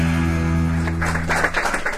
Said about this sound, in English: The problem with applauding before I start is you don't know what I'm going to say, so you assume that it's going to be good.